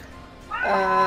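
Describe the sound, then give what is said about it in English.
A female cat lets out one long, drawn-out meow that sounds grumpy and complaining, fairly loud, rising out of faint background noise halfway through. “My cat is not happy. She's pissed.”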